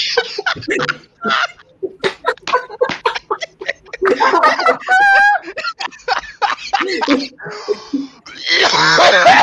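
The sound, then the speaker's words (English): A hard, prolonged coughing fit: rapid rough bursts one after another, loud, broken by strained, wheezing gasps and groaning sounds as it goes on. “I think my intestines, you know, coughed out.”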